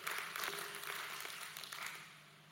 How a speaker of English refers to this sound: Can I get a hand clap from that at least?